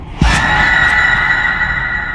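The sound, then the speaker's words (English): A woman's shrill scream bursts in abruptly and holds one piercing, high-pitched note for about two seconds, loud, with no talking. “And she just screams.”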